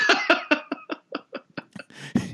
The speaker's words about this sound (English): Why is she always coughing? It's a true story. It is. Everyone always starts the impression with coughing.